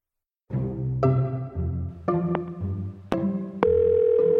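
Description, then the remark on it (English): Electronic telephone tones as a phone number is dialed, shifting in pitch every half second, interrupted by sharp clicks, then settling into a steady, loud dial tone. No one speaks. “About 20 years ago, if you dialed a certain phone number, you'd hear a recording, a sort of early version of a podcast.”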